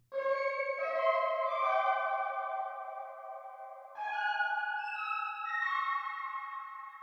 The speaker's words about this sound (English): She was able to reconstruct and simulate the entire possible scale that could be played on one of the music box sides based on the length and thickness of the visible chimes.